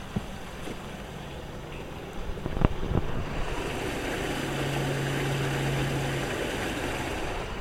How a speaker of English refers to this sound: But it's coming down here through this sluice gate, where fresh water meets salt water, presumably.